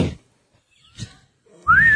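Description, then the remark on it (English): Someone whistles a tune to call birds, a single loud note that slides upward near the end, after a near-silent stretch broken by a couple of soft breathy sounds. No one speaks. “Can I hear your whistle tune? To the birds?”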